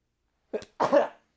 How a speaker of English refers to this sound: I'm going to sneeze.